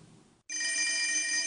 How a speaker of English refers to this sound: phone rings and rings and rings.